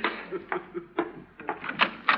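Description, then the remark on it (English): A door is opened to answer a caller, with a quick run of sharp clicks and rattling knocks, unevenly spaced over a couple of seconds, with no one speaking. “Dennis, you stay right here while I answer the door.”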